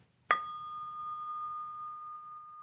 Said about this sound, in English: And we're going to come back to this moment by ringing the bell.